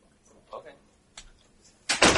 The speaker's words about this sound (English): The locksmith is going to work on this door and change out the locks.